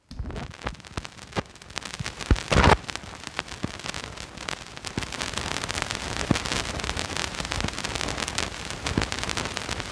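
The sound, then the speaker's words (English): Vinyl record crackle: irregular sharp clicks and pops scattered over a steady, hissy surface noise, with a brief louder burst of crackling early on. No voices. “Man, I love the crackle of vinyl. I don't know if you guys can hear that.”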